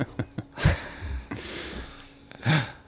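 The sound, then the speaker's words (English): A few harsh coughs, three bursts spaced out over a few seconds, each rough and breathy, with faint clicks and quiet breathing between them. “So speaking of COVID, you hear the coughing.”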